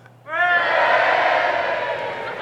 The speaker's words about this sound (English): Boo? Yep, boo. He booed me?